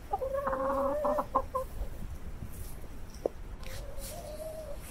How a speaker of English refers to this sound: Here are my chooks, Rex and Drummy.